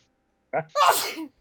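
A single loud sneeze: a short sharp intake followed by a bright, explosive burst that trails off, with no talking around it.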